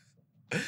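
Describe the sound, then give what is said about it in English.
A pet bird, Lady Bird, lets out a sudden loud, harsh scream after a brief quiet moment while running in circles, the shrill squawk cutting in abruptly and continuing to the end. “And now Lady Bird is screaming and running in circles for no reason.”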